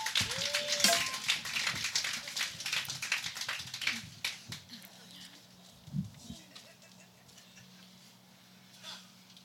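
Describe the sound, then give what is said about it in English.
Footsteps outside an apartment: a quick run of hard taps that grows sparser and quieter, over a steady low hum. “Suddenly, they hear footsteps outside of the apartment.”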